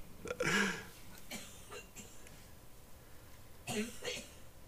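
Someone coughs hard and raspy after a bong hit: a heavy opening burst, a few smaller hacks, then a final pair of rough coughs, close up with no talking.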